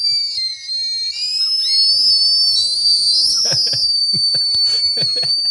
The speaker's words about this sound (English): And I like how they whistle. Like, as soon as I saw Whistling Candy, I was got really excited about Whistling Candy, and then it whistled.